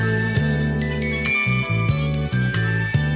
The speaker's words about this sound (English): This song is layered with those Christmas sounds that accents you want to hear in a song. There's these bells, chimes and these fluttering strings and woodwinds, and it just has this Christmas feel.